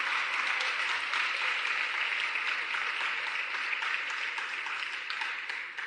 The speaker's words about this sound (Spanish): Dale un aplauso a Él bien fuerte.